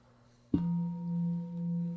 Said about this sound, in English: I ring the bell.